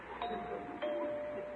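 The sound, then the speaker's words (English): A doorbell, rung by a man at the door on the porch, rings with two chimes, about half a second apart, each note lingering and fading slowly. It is fairly loud, with no talking over it. “Why is he ringing the doorbell after I left him that note?”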